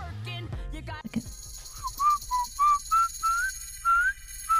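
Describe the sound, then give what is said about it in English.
A clear whistled melody of short, sliding notes in a played recording follows a brief burst of voices and a thump, each tone distinct, with a faint steady hiss underneath. “How are you whistling without moving your lips?”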